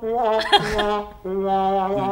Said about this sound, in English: No, it did like the wah, wah, wah.